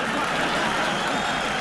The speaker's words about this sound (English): Sorry, guys. Sorry. The crowd just burst in at weird times all the time. Sorry about that.